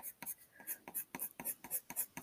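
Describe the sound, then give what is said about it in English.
Quiet scratching of a pencil on paper in quick repeated strokes while drawing for an art project, a steady rhythm of short scribbles with soft gritty texture and nothing else in the background. “I don't know how people work with pencil.”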